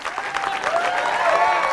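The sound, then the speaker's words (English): An audience applauds steadily for a ghostwriter who has stood up in the crowd, a dense wash of many hands clapping at a moderate, even level, with a faint whistle-like tone rising through the noise. “That's not a good enough clap.”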